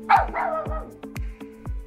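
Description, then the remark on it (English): A dog barks about four times in a steady, evenly spaced rhythm, fairly loud, with nothing else in the background. “And there was one dog.”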